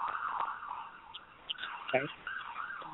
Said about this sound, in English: Hang on one second. I have sirens. My office is on Main Street in our little town, and so anytime the fire trucks or the ambulances go down the street, it gets pretty darn loud. They're gone now.